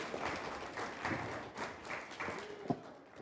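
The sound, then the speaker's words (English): A crowd applauds steadily for a few seconds for helpers, a dense wash of many hands clapping at a fairly even level, with a brief higher-pitched sound rising above it near the end. “Will you give these guys a round of applause for their help?”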